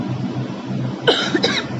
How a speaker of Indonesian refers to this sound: Sampai batuk.